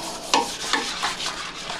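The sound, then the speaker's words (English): A toilet being scrubbed with a brush: about five uneven, hissing bristle strokes against wet porcelain, the first one loudest with a brief squeak, and no voices. “And scrub that toilet.”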